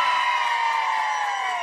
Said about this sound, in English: So you guys need to, real quick, make some noise right now. This is airing tomorrow. Come on, everyone cheer. Yeah!